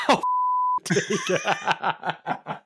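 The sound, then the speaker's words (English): A short, steady censor bleep tone of about half a second cuts in abruptly, then gives way to a run of rhythmic, breathy laughter pulses. “put that in the timestamp so we can beep that.”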